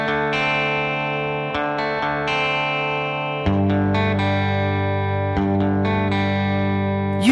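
The opening of a band's brand new rock single: loud, heavily distorted electric guitar chords ring out and sustain, shifting to new chords every couple of seconds, with no vocals yet.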